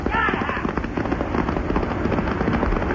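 A flash flood rushes down an arroyo in a loud, unbroken roar, its churning water carrying a rough, crackling texture that holds steady from start to finish.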